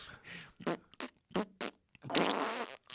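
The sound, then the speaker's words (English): A voice imitates farting with a series of short, wet sputtering bursts, several quick pops followed by one longer drawn-out raspberry, loud with no talking. “It's just like a guy talking in farts, and then he just responds by, like, doing armpit farts back at him.”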